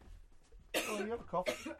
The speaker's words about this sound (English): Oh, you have a cough.